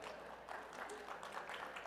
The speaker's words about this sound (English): Are you applauding me for pandering to my wife?